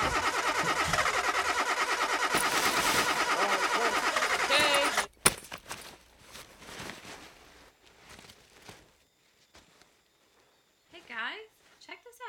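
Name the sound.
car engine starting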